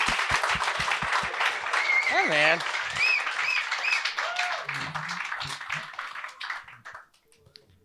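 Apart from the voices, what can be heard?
audience applause and clapping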